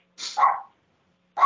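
A dog barks twice, a sharp two-part bark followed after a short pause by another, clear with no talking over it.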